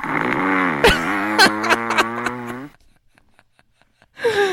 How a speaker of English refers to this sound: Here's her snoring.